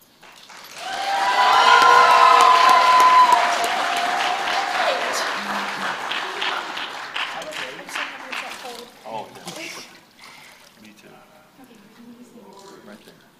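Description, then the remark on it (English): A crowd bursts into a practiced cheer, loud cheering and sustained applause with whoops and a high whistle early on, then the clapping gradually thins and fades over about ten seconds. “All right, so we're going to practice the cheer when the first one comes out.”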